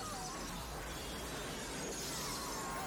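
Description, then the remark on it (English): Loud, sustained shattering of fake breakaway glass in a film action sequence with stunt performers, a dense crash of breaking and scattering shards that carries on for a few seconds with no one speaking. “This is stunt people and a real glass. I mean, fake glass.”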